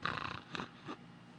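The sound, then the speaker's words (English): A low, rumbling wolf growl rolls out, starting strong and then breaking into a couple of short, throaty bursts before fading. No one speaks. “The growl ripples out over, and the elder goes, enough. I agree with the wolf.”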